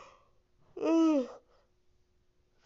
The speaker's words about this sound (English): Damn it. Sorry. Yawn is killing me right now.